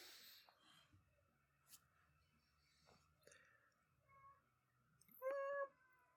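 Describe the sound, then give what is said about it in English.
A single drawn-out cat meow rises near the end, clear, after several seconds of quiet background with faint rustles and small clicks. No one speaks. “Probably have to check if the cat's in the background of this.”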